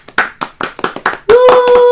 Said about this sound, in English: All right, so let's give a round of applause to all of our lucky wieners.